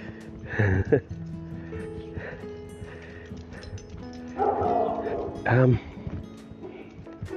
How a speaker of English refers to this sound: I was waiting for another doggy. Little Jory.